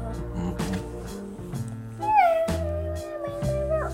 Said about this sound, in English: She meows at doors. She meows at doors?